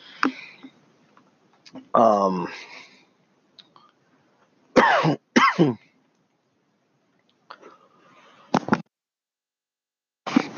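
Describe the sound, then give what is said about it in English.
A series of harsh coughs and throat clearing, several bursts spread over about ten seconds with short quiet gaps between them, a few loud and others fainter. “Sorry, I didn't want to cough in you guys' ears anymore.”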